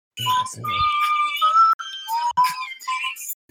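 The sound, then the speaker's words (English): Someone whistles a high-pitched tune in long, steady notes with small slides between pitches, broken by a couple of brief pauses and preceded by a short low vocal sound. “Is that a flute or him whistling? That's him whistling.”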